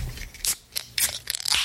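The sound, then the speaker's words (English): A can of Lawson's Finest Liquids Sip of Sunshine IPA being cracked open: a short run of crisp metallic clicks and sharp hissy bursts of fizz, moderately loud, with no one talking. “You want to crack it? Let's crack it open.”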